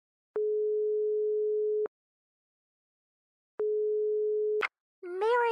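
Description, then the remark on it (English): A telephone ringing tone heard over the line: a long, steady buzzing tone, a pause, then a second tone cut off partway as someone picks up and a voice begins speaking. “I was waiting for this phone call.”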